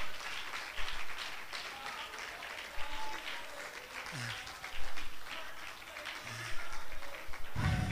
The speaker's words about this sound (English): Clap your hands and give him praise right now.